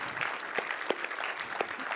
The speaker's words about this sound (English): or you yourself have served, would you mind standing? And we'll just give a round of applause for your sacrifice. Thank you.